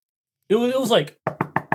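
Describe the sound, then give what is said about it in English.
A short burst of voice, then four quick, evenly spaced knocks on a hard surface, moderately loud, like someone rapping out a knock pattern by hand. “And literally, a few seconds later, we hear knocking up at the cross.”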